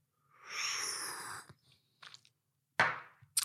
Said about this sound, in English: It's Sunday night. I'm sitting back. I'm sipping a little rakia.